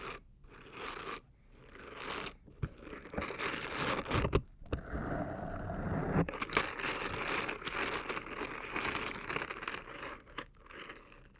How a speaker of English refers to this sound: Scrubby, scrubby, scrubby, scrub brush, silicone, silicone, scrub brush.